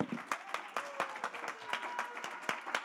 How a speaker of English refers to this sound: Somebody ought to clap your hands and give the Lord some praise.